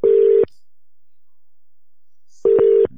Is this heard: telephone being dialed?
yes